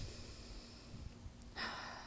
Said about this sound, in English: I'm breathing and I'm connecting.